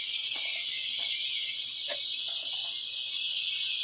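Meat sizzles on a grill: a steady, bright hiss fills the whole clip, broken by a few faint pops and crackles. Nobody speaks.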